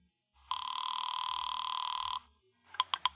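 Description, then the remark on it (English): A telephone bell rings loudly in one long sustained burst, followed after a short pause by the start of a second ring with a few rapid clangs, as a call is placed from an office. No one speaks. “It's ringing.”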